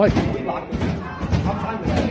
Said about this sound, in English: It's hard to hear, but you can see people and hear people bashing fire doors there, shouting "Free Palestine," but a bunch of Jews who are having a meeting.